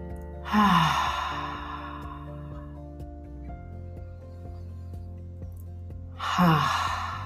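Two long, audible deep breaths, one near the start and another at the end, with a quiet stretch between them over a soft, steady ambient music drone.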